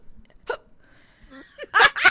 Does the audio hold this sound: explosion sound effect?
no